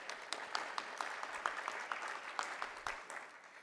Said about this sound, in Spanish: Un aplauso para la licenciada.